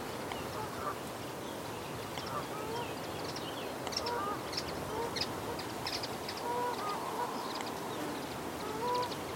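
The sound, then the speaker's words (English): Ducks of different species and geese call across a lake in a busy, overlapping chorus of quacks and honks, over a steady bed of low outdoor background noise. “And on the lake, there's lots of ducks of different species and swans.”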